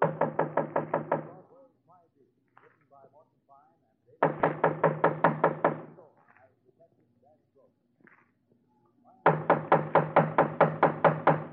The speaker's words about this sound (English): Just knock on the door, huh, Dennison? Anything you say.